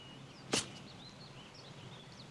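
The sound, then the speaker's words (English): A single sharp thwack of an arrow striking an android just above its sixth intercostal support, brief and fairly loud, set against a quiet outdoor background with faint birdsong and a low hum. “The arrow impacted just above my sixth intercostal support, penetrating my secondary subprocessor.”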